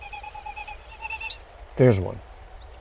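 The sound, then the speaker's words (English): A Wilson's snipe, a shorebird, winnowing as it dives toward the ground over a wet open meadow: wind rushing over its tail feathers makes a hollow, rapidly pulsing whistle that wavers and rises over about a second and a half, fairly faint, followed by a brief spoken remark. “The sound you hear is the rushing wind over the tail feathers as they dive towards the ground.”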